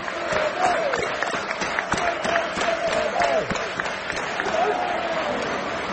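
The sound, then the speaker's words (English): A stadium crowd at a game involving United applauds steadily, dense overlapping claps over a constant roar of voices, with some shouting and chanting rising through it for the whole stretch. “He's giving us applause.”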